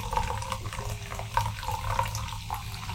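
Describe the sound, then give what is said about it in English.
A fizzy drink is poured in a steady stream of splashing liquid for a few seconds, with faint bubbling gurgles and no voices. “I'm pouring another drink.”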